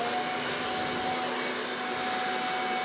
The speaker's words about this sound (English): Instead, my dad happened to have a modern alternative sitting in his garage. Hurricane power leaf blower.